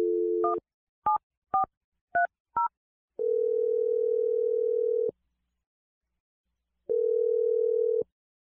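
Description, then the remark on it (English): A brief phone dial tone gives way to five quick touch-tone key beeps as a number is dialed for a phone call. Two long ringing tones follow, separated by a pause of silence. No one speaks. “I'm going to dial the number for you and let you make your Awkward Tuesday phone call.”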